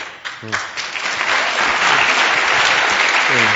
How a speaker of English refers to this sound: Hey, you know, maybe there's somebody in here that doesn't know why you're clapping. They're clapping for Him, not for me. Just in case you don't know, that's what that's about.